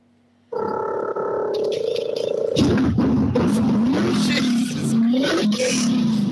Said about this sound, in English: I'm sitting in a gravel car park in the side of my house. Just kick it in the ass and just give it a big rev for us. Well, I can do that.